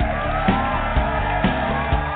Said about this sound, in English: And the crowd goes wild.